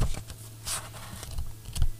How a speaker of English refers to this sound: ASMR. What'd you say? A little ASMR. A little notebook ASMR moment.